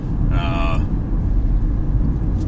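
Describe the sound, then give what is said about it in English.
Steady, loud low-frequency road rumble fills the cabin of a moving single-gear hybrid car, continuous throughout, with a brief higher tonal sound near the start. “Also, I have no idea how much you can hear right now with the amount of road noise this thing is putting off.”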